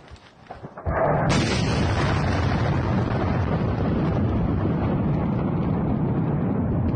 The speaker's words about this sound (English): So, and now I'm gonna pull up this right here, which is actual footage of this fucking explosion. Like he was just talking about, this is insane.